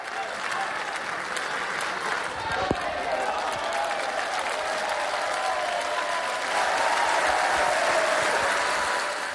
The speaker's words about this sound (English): It says an awful lot that the biggest cheer of the day came at this moment.